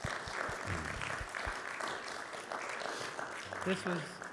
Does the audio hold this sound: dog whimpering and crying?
no